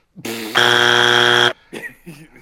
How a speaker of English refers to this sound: That got buzzed